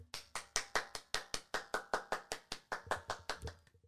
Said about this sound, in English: I'm the only one clapping, but I hope you're clapping at home too. That's just how it goes.